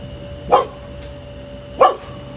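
A dog barks twice, two short sharp woofs about a second apart, over a steady background hum with a faint insect-like whine.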